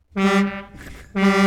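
Two loud blasts of a truck air horn, each a brassy, harmonic-rich drone with a low fundamental, separated by a brief gap of noisy rumble.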